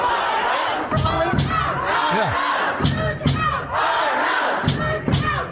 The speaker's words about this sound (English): Here is the protesters pounding on the door to the legislature.